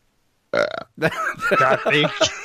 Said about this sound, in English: It's a very weak burp for a man of your stature, …. I thought it was more like burp.